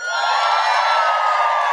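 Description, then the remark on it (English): A live crowd at a live-streamed show cheers and whoops loudly, a dense, sustained roar of voices with high-pitched shouts layered on top, steady for under two seconds with no speech over it. “We've got a live crowd. Let the world know you're here.”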